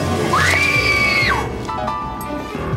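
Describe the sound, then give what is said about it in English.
A woman lets out a single shrill, frightened scream that swoops up and holds for about a second before breaking off, loud over a rumbling, noisy background that continues afterward. “She screams and cowers and waits for death.”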